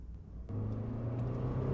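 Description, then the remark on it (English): A car engine rumbles low and steady, then surges louder after a brief moment as it accelerates, weaving in and out of traffic with a passenger on board, its droning hum holding strong with no voices. “Claudia weaves in and out of traffic.”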